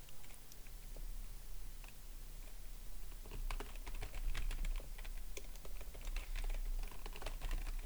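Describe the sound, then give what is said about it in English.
Rapid, overlapping keyboard typing from several people at once as they write down answers to a quiz question, a busy clatter of key presses that thickens in the second half, with no talking. “They're looking down at the keyboards and right. stuff down.”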